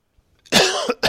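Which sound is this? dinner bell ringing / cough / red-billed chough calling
cough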